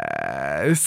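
A short, close burp, muffled as if into an arm, its low droning pitch buzzing for under a second before dipping and breaking off at the end.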